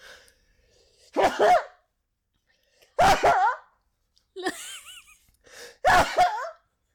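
Three loud sneezes, roughly a couple of seconds apart, each a sharp voiced burst. A brief wavering vocal noise falls between the second and third.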